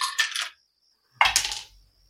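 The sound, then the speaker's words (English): Dice clatter across a hard table in two quick bursts for a flight roll, a short pause between them, each a bright rattling tumble that settles fast. Fairly loud, with no talking. “We need some more customer interaction with those dice.”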